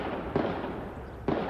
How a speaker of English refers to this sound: Authorities say officers exchanged gunfire with the suspect, quickly ending the rampage, killing the suspect. Shots fired. Shots fired here.